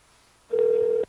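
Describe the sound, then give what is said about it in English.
A single steady electronic ringback tone sounds from a phone line on an outgoing call, a clean sustained hum lasting about half a second against near silence, heard alone without any talking. “It's ringing.”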